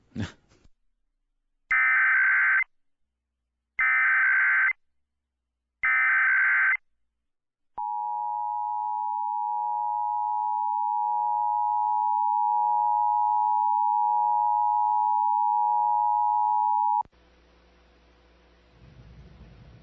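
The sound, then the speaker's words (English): Three short, harsh, buzzy data bursts are followed by a long, steady, piercing electronic attention tone of an Emergency Alert System test that holds for about nine seconds before cutting off into a faint hiss. “This is a test of the emergency alert system.”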